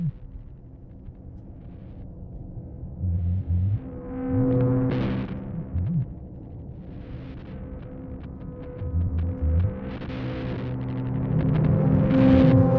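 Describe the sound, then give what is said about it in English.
A deep, steady electrical hum drones throughout on a phone line during a call, with low throbbing swells and brief bursts of hissy static layered on top. No one speaks. “Some kind of a deep static.”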